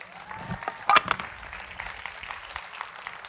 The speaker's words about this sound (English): Give yourselves a hand clap.